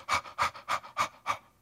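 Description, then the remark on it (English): A person imitates a deer panting as when chased, with five quick, evenly spaced breathy huffs, fairly loud, with no talking. “There's only one time when a deer pants is when he's being chased by an enemy.”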